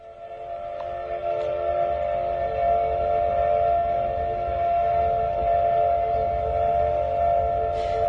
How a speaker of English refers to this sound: OBI's steam whistle blasts for about a minute and can be heard all over town. It customarily goes off when the processor reaches 100,000 cases. This year, that whistle was late, but the cannery workers aren't falling behind.